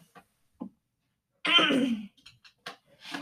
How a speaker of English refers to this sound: Wait, hold on 1 second. Let me clear my throat.